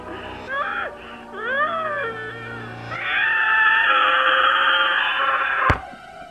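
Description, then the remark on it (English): A man screams over a thin, tinny phone line: rising and falling wails at first, then one long, loud, strained scream that cuts off with a sharp click. “This time he was screaming.”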